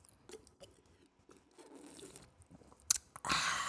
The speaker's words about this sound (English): Oh, let's take a little sip.